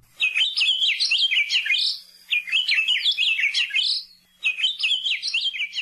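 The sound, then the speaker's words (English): An Akiapolaau, a large, bright yellow honeycreeper from the Big Island of Hawaii, sings three loud warbling phrases of rapid high chirps and trills, each lasting under two seconds and separated by brief pauses, with no talking. “Akia pola au are large, bright yellow honey creepers that act like woodpeckers.”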